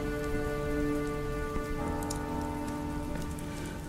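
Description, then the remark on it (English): Car tyres hiss steadily over a wet road as a car drives past, a loud continuous spray of watery noise with a low droning hum underneath, holding for the whole clip with no voices. “The wet sound of tyres on the road.”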